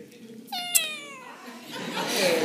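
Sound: cat meowing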